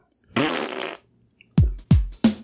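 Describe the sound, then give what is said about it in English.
A long, raspy fart is followed after a brief pause by three short, punchy farts in quick succession, all loud, with no talking. “Fart number one.”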